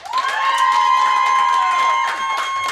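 A crowd cheers and claps for a few seconds to vote for the contestant they want to win, with a sustained high-pitched shout or whistle carrying over scattered applause, loud and steady throughout.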